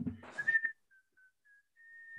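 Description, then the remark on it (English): Someone whistles a short tune, a few brief separated notes followed by a longer held note, after a quick burst of breathy noise at the start. “I had that double whistle at the beginning.”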